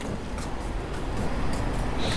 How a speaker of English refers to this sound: And the coffee shop is actually built directly under the trains. So you can hear the trains going over me sometimes. Maybe you can hear it. I'm not sure if you can hear it. I can hear it.